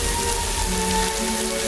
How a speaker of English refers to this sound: And there's so much rain coming down on them in that scene. Like it is a ridiculous amount of rain to be coming down on anyone at any time.